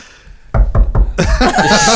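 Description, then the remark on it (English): Three sharp knocks land in quick succession, a knocking sound effect, followed immediately by a loud, bright burst of voice that sounds like laughter or a snicker. “Somebody call thought knockers?”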